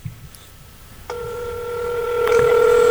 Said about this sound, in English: The phone's ringing. Oh, yeah. How's that sound? Sounds like a ring. Sound good? Yeah.